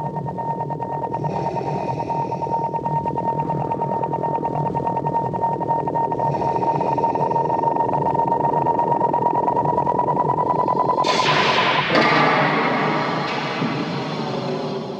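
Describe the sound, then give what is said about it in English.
A sci-fi torture droid effect: a loud, steady electronic drone with a piercing whine and recurring hissy bursts, then a sudden harsh door slam shifts it into a rougher, grinding texture. No talking. “So moving on, though, we've got the torture droid and door slam, which also is very similar to what we last heard.”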